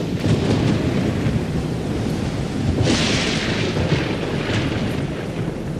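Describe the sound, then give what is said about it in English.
A thunderstorm rages at night over a boat at sea, with a constant deep rumble of thunder and steady rain hissing throughout, swelling into a brighter crackling burst midway. No voices are heard. “The first night, they end up in a storm.”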